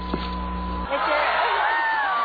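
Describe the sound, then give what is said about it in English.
A crowd at the lighting of a 73-foot Christmas tree cheers and calls out in a dense, continuous roar that cuts in abruptly after a brief steady hum, like two recordings spliced together, with a whistle-like tone rising above it. “It shows it accurately as one, two, crowd fades.”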